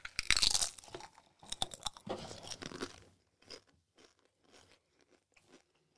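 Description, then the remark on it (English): Loud, sharp crunches as Doritos Stacks Flaming Chicken Wings tortilla crisps are bitten, followed by a run of softer, rhythmic chewing that fades into quieter intermittent munching, with no talking. “Now, Dorito Stacks Flaming Chicken Wings.”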